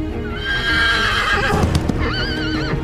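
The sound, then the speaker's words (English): A horse whinnies loudly, its wavering neigh rising and falling, while hooves clip-clop and shuffle underneath in a busy, uneven rhythm; no one speaks. “So, this horse is gorgeous.”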